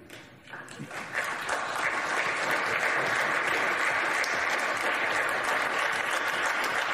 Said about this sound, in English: And they even stand up to applaud Mitt Romney. And oh, is he soaking it in?